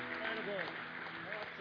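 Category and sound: crowd, audience applause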